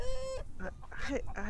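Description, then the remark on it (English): A chicken clucks, starting with a drawn-out, nasal squawk and following with a few short, choppy clucks in quick succession, with no one talking. “My chicken almost crossed the road.”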